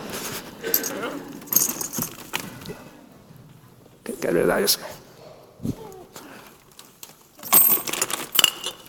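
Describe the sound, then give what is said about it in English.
Metallic clinks and jingles of coins being dropped and handled with a glass during an experiment, coming in short bursts, with people talking over and between them. “There's coins perhaps too strong for the glass.”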